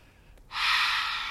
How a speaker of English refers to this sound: She's breathing in through her nose, and as she breathes in, her arms are straight and they rise up